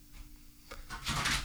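A door is opened after a knock: a short click of the latch, then a brief rushing swish as it swings open, louder toward the end, with no one speaking.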